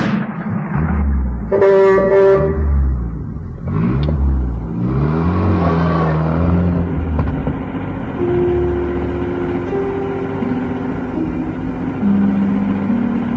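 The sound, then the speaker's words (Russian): A car horn gives a couple of quick honks, then a car engine revs and accelerates away, heading to an airfield, its pitch rising and shifting before settling into a steady drone. No one speaks. “Едва усевшись в машину, он безмятежно заснул.”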